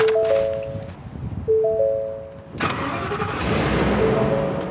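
The Burlington Police Department's Emergency Response Vehicle, a truck: the starter whines and cranks twice, then the engine catches with a loud burst and settles into a steady, rumbling idle. No one speaks.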